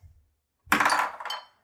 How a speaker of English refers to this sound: So I'm gonna roll my dice.